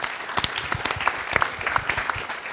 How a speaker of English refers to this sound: And also a big thank you to the Japanese American National Museum for welcoming Zócalo into its new home here at the National Center for the Preservation of a Democracy. So a round of applause for them, too.